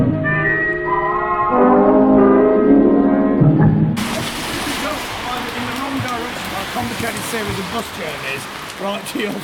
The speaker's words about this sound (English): It's rather nice being out in the rain.